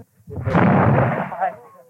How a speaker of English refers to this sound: Two loud reports from miniature cannon high on the city's walls echoed over Catholic Bogside